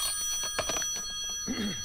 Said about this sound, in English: What time is it? The phone. Must answer the phone.